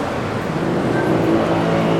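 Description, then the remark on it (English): A large bus rumbles past near a station, its engine drone steady and loud for the whole moment, with low humming tones over broad road noise and no voices. “There's all kinds of buses, and I'm sure these trains take you to many fine places, but I don't know.”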